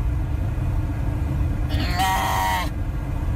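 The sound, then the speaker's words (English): A steady, heavy low rumble of road and engine noise runs throughout, heard from inside a truck stuck in traffic on the drive home with a couple of sheep aboard. A brief harmonic, bleat-like animal cry rises over it near the middle. “It's my wife driving home with a couple of sheep in her truck, stuck in traffic.”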